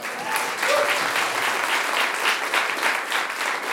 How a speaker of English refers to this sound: Are you going to clap in for that?